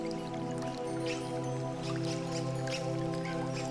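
Water of a creek flows continuously among pebbles and rocks at a steady level, with soft trickling and dripping splashes throughout and a low, sustained tonal hum underneath. No one speaks.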